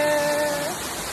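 A waterfall rushes in a steady, full flow of falling water, filling the whole second with an even hiss and roar, while a faint sustained tone hums underneath.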